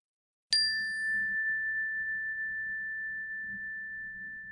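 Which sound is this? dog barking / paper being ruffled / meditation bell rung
meditation bell rung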